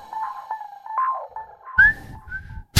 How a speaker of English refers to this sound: Whistle fail. I was trying to whistle the theme. I was like, I'll jump in with the whistling theme. And then not so much, right?